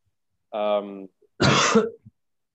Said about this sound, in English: Was that an intentional cough?